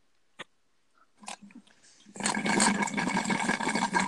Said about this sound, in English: That was me slurping on the old Kool-Aid there.